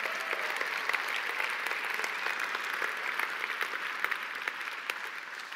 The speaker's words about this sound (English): But would you give these guys a round of applause? They are doing some amazing work.